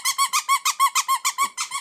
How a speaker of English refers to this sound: She's going to lose it. Look out. She's going to explode. Do we let the dog go and play with Squeaky toy before the holidays go insane?